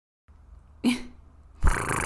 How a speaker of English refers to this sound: My cat just decided he was going to come up and try to butt my microphone. No, thank you.